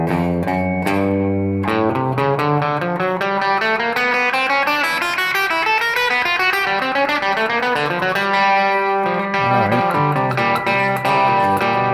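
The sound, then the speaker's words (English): A distorted electric guitar plays a continuous run of single notes in the key of G, approaching the chord tones chromatically over a ringing open string, steady with no voices. “I like to use this chromatic approach to the chord tones.”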